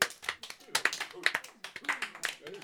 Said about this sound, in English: Anyway, I meant a round of applause. Come on, clap. Clap.